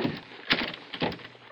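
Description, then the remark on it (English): A stuck door rattles and thumps in its frame, with two sharp knocks about half a second apart amid a scraping, jostling noise, as it is shoved and shaken without opening. “The door's stuck.”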